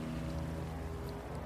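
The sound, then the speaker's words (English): A small golden motorboat speeds forward, its engine droning loudly and steadily, a low rumbling hum with a faint wash of wind and water around it, and no voices. “Taffy and Seeley whirled around to see the small golden boat speeding towards them.”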